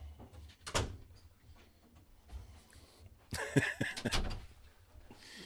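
A door being shut, with a sharp knock early on, then a cluster of louder thuds and rattling as it swings closed, set against a quiet background.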